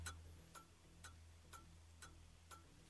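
A game-show clock timing a one-minute, 10-question round ticks steadily, six sharp clicks about half a second apart, over a low constant hum with no voices.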